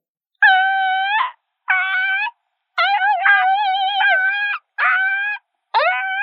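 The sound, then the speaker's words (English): A voice imitates a mourning dove's coo: five sustained, hooting tones separated by short pauses, fairly loud, with some notes bending upward at the end. “Although I practice by myself in my home just by my echolalia. But that's always like a morning dove.”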